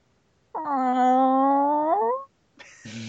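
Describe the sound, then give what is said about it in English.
A human voice imitates the sad growl of a chain chomp from Mario: one long, drawn-out mournful tone with a steady pitch that wobbles and rises slightly at the end, followed by a short noisy burst. “Growls the chain chomp. It's a sad growl.”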